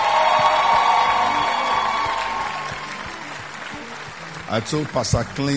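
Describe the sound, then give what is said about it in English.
An audience claps and cheers in a dense, steady roar that gradually fades over a few seconds, then a single voice begins speaking as the applause dies down. “Put your hand together for the woman of God.”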